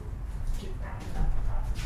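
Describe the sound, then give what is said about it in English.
A dog barks and whimpers in short bursts against a noisy, rumbling background, with muffled human voices mixed in. “Get your fucking dog, man.”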